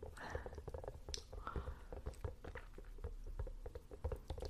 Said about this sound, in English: Quite soothing, interesting, wobbly silicone sound. Reminds me of raindrops, but also popping popcorn.